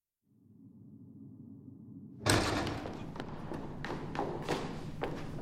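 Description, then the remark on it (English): A low droning hum gives way to a sudden loud bang as a thug bursts open a door, followed by a noisy wash of sound and scattered thumps, like hurried footsteps as he runs in. “A thug bursts through the door and runs over to me while I am smoking.”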